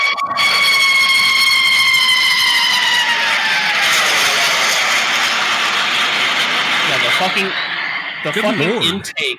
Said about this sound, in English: The intake is louder than the fucking jet itself. Like, that's so fucking stupid. That's insane.